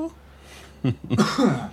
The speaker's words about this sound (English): Bless you. Thank you. I drank too much bubbly down the wrong throat. I thought it was a cough.